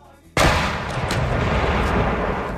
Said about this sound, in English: Fire the cannons.